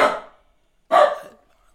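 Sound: dog barking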